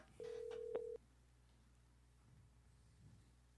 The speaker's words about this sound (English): Turn it up a little bit. I can't hear the phone. You can't hear it ring?